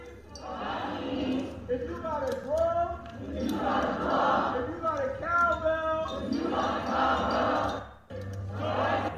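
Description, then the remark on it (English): A large crowd of roughly a hundred people shouts and chants together at the home of LA Mayor Eric Garcetti, which LAPD is guarding. Many overlapping voices form a loud, continuous roar that briefly dips near the end before surging again. “It sounded like it was at least 100 people or so. It sounded pretty big.”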